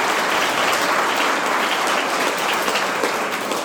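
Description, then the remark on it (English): A steady round of applause from a show audience, dense crackling claps that hold at an even, loud level for several seconds with no voices over them. “So we're going to give you a round of applause before we get on with the rest of the show.”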